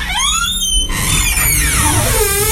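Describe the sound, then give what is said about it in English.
A door creaks open with a long, loud squealing groan that glides up and down in pitch over a couple of seconds, with no voices. “The door is opening.”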